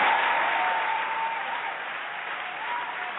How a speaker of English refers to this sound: Cue the applause noise maker. Actually, that gets one of these.